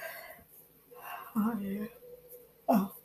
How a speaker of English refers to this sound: I'm yawning. It's 3 a.m. here.